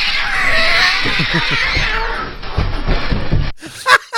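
animal, cat yowling

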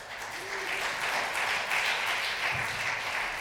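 crowd, audience applause

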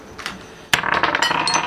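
dice being rolled

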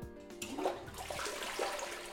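household object, toilet flushing

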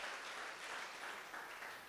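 crowd, audience applauding

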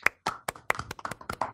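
crowd, round of applause

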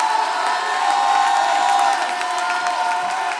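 crowd, audience clapping and shouting

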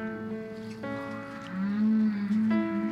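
animal, humpback whale song

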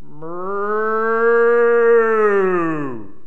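animal, cow mooing

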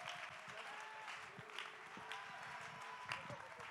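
crowd, audience clapping hands

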